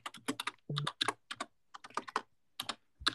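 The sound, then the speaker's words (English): Rapid computer keyboard clicking from someone typing, with uneven bursts of sharp keystrokes and brief pauses between them, heard alone without any talking. “Can you hear the clicking of my keyboard?”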